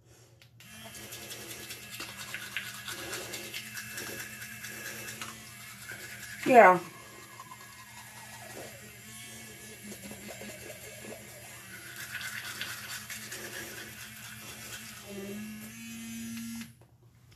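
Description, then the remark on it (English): A rechargeable Go Smile electric toothbrush buzzes steadily for the whole stretch, a constant motorized whine with a brief louder scrape midway, while a person talks briefly over it. “The thing I like about this toothbrush is it's rechargeable, and it gets your teeth really clean in 2 to 3 minutes.”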